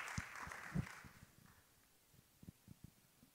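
A short burst of audience applause for Dr. Chavis and his co-host at the start of a fireside chat on the Black Press State of Emergency, quickly thinning out and leaving a few scattered, sparse claps trailing off at a low level.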